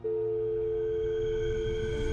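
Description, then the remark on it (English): A steady telephone line tone hums without a break for about two seconds after a caller hangs up, clear and fairly loud over a faint low rumble, with no voices. “Then he hung up.”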